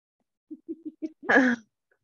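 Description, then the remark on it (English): Four quick, muffled coughs in a steady rhythm, then a louder, harsher, drawn-out cough that ends the fit, with no talking. “I have this coughing fit.”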